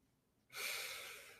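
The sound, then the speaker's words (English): A single deep breath drawn in, starting abruptly after a brief silence and continuing as a steady, airy rush for about a second before easing slightly. “That was a better breath.”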